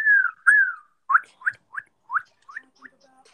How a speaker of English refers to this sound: Can any of y'all whistle? Yeah. Uh-uh. Nope. I tried right now.